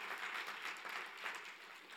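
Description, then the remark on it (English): A crowd applauds steadily, many hands clapping in a dense, continuous patter that swells slightly in waves, with no voices heard over it. “Please give yourselves all a round of applause.”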